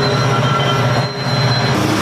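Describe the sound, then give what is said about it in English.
A train rumbles past a man standing outdoors recording a video, loud and steady, with metallic wheel squeal and a sustained low drone filling the whole two seconds, no voices. “Why is he standing in front of a train?”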